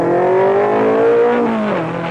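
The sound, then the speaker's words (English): The race-bred engine of a new Ford Cortina revs and accelerates, its rising harmonic whine climbing steadily in pitch before easing off near the end, loud and continuous with no voices. “Buckle up. You're going for a ride in a new Ford Cortina. A car with more go.”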